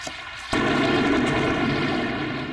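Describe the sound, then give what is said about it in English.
During a night thunderstorm in Pungo, a sudden loud crack of thunder breaks in after a brief quiet moment, then rolls into a deep, sustained rumble that fades only slightly over the next two seconds. “I tell you, we've had so much thunder and lightning that I've just been waiting for the power to go out.”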